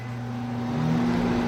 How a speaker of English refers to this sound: Here in Costa Rica, it does not. They could possibly have some that do, but I haven't seen any. I would also like to mention this is my first time using a microwave here. Here are the different options. I'm going to put it on 10 seconds.